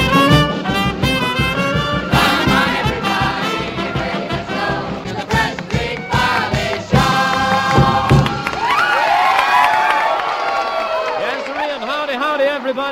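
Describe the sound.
A large crowd at a George Washington's birthday party at Ivanhoe Temple cheers and shouts continuously, many voices overlapping into a loud, dense roar with individual yells rising above it throughout.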